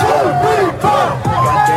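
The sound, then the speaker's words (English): A crowd cheers and shouts on a busy nightlife street, many voices overlapping in loud, rising whoops and yells that swell in waves, with brief dips between bursts. “The new rules implemented after crowd scenes like this spread during the pandemic.”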